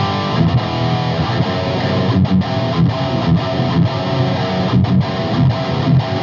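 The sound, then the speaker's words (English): A loud, heavily distorted electric guitar plays a steady chugging rhythm part through a dirty Synergy amp, with thick sustained chords and short palm-muted stabs, alone with no talking. “So this is my like dirty rhythm sound.”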